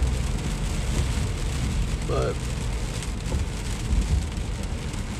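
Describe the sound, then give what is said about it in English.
Car tires hiss and splash steadily through rainwater collected at the side of a wet road while it rains, a continuous loud wash of spray from inside the moving car, with a brief spoken word over it. “Sorry, it's raining, so that's, like, a bunch of water on the side of the road that, like, my tires are going through.”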